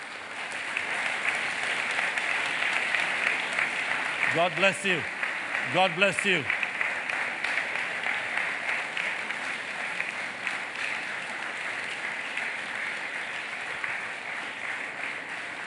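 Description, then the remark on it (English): A church audience claps and applauds steadily throughout to recognize the women of various ministries, a dense continuous patter of many hands, while a man's voice briefly calls out over the applause. “That's not a clap.”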